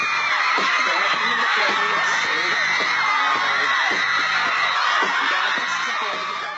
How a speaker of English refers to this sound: Screaming teenagers would pile into Times Square, either inside MTV's fishbowl-like studio or out on the street, shrieking for favorite pop stars and their videos.